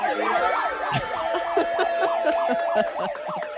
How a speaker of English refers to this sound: I didn't know there was going to be police sirens going on.